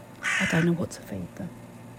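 A loud, harsh caw from a pet crow, a single drawn-out rasping call followed by a couple of softer, shorter caws.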